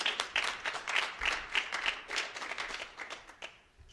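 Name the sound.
audience round of applause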